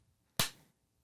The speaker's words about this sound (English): Ooh, slow clap. What's up? That deserved a slow clap, sir. That was beautiful.